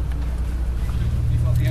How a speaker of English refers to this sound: Right, we've been loaded onto a bus now. Given headsets, we've had our cameras taken off us, and we're off for the factory tour.